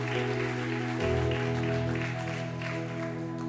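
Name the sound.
audience round of applause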